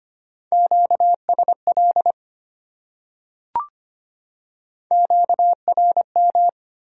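Morse code sent at 25 words per minute as a clear, steady beeping tone keyed in rapid dots and dashes, two short groups separated by a pause with a single faint click between them.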